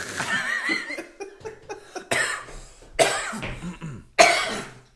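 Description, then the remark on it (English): A person imitates a man's congested nasal snorting: a series of loud, harsh snorts and sniffs, with the strongest bursts coming at irregular intervals toward the end. “he'll just sit there and fucking snort and all, like, all the time”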